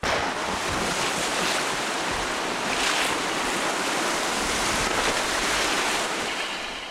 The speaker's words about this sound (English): Our story opens at night, at a darkened and seemingly abandoned lighthouse. A storm rages all around, and waves crash against the rocks of the small island where the lighthouse is located.